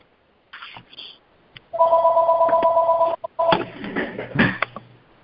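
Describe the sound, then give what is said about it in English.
A telephone rings loudly, a long steady electronic ring followed by a second shorter burst, with some brief clattering noises before and after. “Yes, we had a phone call.”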